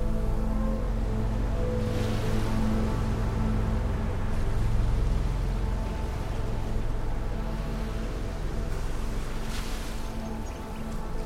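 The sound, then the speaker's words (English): A continuous wash of rhythmically lapping ocean waves and salt sea breeze, steady and fairly loud, with a low droning rumble underneath and gentle swells of surf rising and falling throughout. No voices are heard. “The rhythmic lapping of ngalui, the waves, and the gentle song of salt breeze. Let these sounds guide you into a state of calm and relaxation.”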